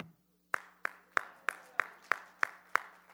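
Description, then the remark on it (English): Eight crisp, evenly spaced claps in a steady rhythm, about three per second, sharp and moderately loud, with a faint low hum underneath and no talking; clapping at a church gathering in Beacon, New York, for those who arrived on time. “And if you were here on time, which I'm noticing so many more of you are, which on me, clap for you.”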